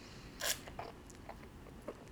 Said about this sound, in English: I'm going to take one more sip, too, because I filled it up really high in the pint glass.